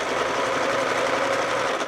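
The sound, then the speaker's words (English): A sewing machine on a kitchen table runs steadily, its fast, even mechanical whir and needle chatter filling the whole stretch without pause or voices, as a woman slowly pieces together a new lining for her coat. “Lucy sits at her kitchen table in front of a sewing machine”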